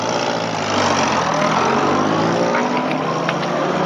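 A Jeep engine runs steadily and loudly throughout, a broad rumbling drone with a slight rise in intensity early on as the Jeep pulls away and drives off.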